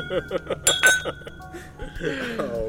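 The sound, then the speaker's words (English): Glasses clink together in a toast, a couple of bright ringing chimes, with voices chattering and murmuring around them. “Cheers, Jeff.”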